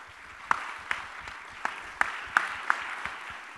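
An audience applauding ESM Goh Chok Tong, a steady wash of many hands clapping with a few sharper, louder claps standing out irregularly. No one speaks.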